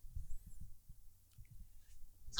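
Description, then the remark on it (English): A sudden, loud sneeze bursts out at the very end, sharp and cut off, following a stretch of soft low thumping and faint muffled bumps. “Bless you. Thank you.”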